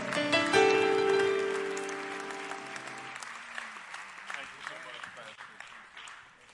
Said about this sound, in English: Welcome. Would you clap your hands and welcome them tonight?